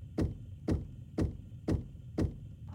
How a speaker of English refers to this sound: There is a knock at Athelina's back door.